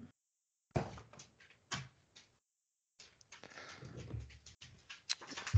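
dog barking

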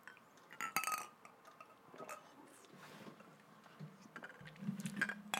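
glasses clinking

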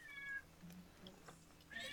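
cat meowing

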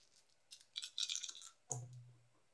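dice being rolled

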